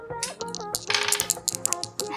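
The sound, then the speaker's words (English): Dice clatter and tumble across a hard surface in a quick burst of sharp clicks and rattles, moderately loud, with no one speaking. “I'll have all of you roll plus pluck for me.”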